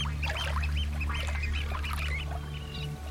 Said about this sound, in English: I've just had a little tern go right in beside me and pull out a little sand eel, and it's still managing to squeak with its food in its beak.